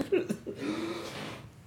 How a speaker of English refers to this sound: Like that. Like, literally, like that. Oh, fucking fuck, that hurt face to that elbow, the inside of the elbow. Damn. Like, that's how I fucking cough.